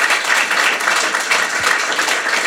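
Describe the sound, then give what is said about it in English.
A crowd applauds steadily for panel speakers after their final thoughts, dense overlapping claps forming a continuous bright wash of sound, fairly loud and sustained throughout with no voices standing out. “Real quick round of applause for these guys.”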